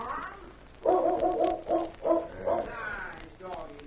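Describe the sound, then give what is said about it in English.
A dog barks several times in a quick, uneven run, sharp yaps bunched together at moderate volume, then trails off into a quieter final bark or two. “The dog. Someone's coming, boss.”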